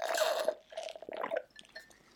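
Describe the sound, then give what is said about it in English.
Wet slurping and sipping as someone drains the last two sips of a cocktail made with Fireball whisky, a couple of short gulps followed by fainter liquid trickles, with no one talking. “You gotta finish your drink. You got 2 sips left.”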